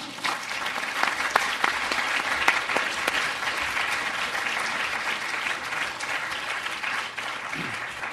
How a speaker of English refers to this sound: Thank you very much for applauding